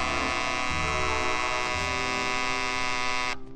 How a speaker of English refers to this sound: Yes, 10 minutes after the radio automatically goes on, the personal's alarm can buzz to make sure you don't oversleep.